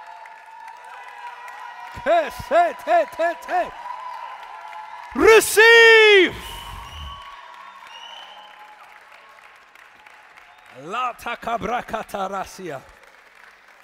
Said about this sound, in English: Somebody rejoice, somebody clap, somebody shout.